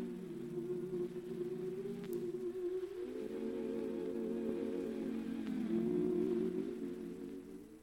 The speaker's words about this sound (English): NBC Chimes on that Martin Lewis show.